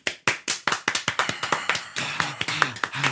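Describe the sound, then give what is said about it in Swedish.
Brief applause from a small group, quick, slightly uneven claps for about three seconds, with faint vocal sounds rising underneath toward the end. “Och så applåder för den.”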